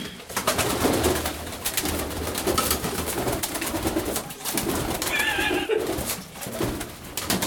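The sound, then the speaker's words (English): A dove coos in low, soft repeated calls over a steady wash of background noise, with a brief higher-pitched chirp partway through and no one speaking. “We'll keep you updated on the podcast as to the dove's progress.”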